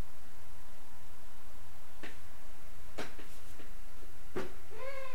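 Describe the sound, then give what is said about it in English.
A cat gives a short meow near the end, after a few sharp taps or clicks, over a steady low background hum. No one speaks. “Oh, quiet, kitty.”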